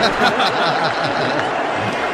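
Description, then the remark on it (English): A large audience roars with a steady, dense mix of cheering and booing as Elon Musk is brought on stage, loud and continuous throughout, with many voices blending together and no single speaker standing out. “So, according to witnesses who were there, they say the booing went on for a solid 10 minutes.”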